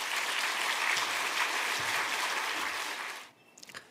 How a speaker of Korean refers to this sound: 그리고 여러 가지 저서들을 통해서 하나님의 나라 그리고 하나님의 마음을 신실하게 전하신 그러한 목사님이십니다. 우리 한번 나오실 때 크게 박수함으로 환영하겠습니다.